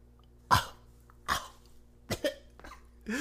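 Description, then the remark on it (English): Several sharp, harsh coughs in an uneven series, including a quick double cough, fairly loud, with a faint steady hum in the background. “And also, anytime somebody cough, they really make the coughs noticeable.”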